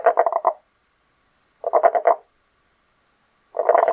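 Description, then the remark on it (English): A tomato frog calls in three separate bursts of rapid, pulsed croaking, each about half a second long, with silent gaps between them; the calls are fairly loud. “This is what a tomato frog sounds like.”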